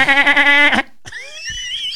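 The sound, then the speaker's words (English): A person does a loud, shaky, nasal whinny imitation lasting under a second, followed by a brief pause and quieter, wavering high vocal tones trailing off. “You're a horse.”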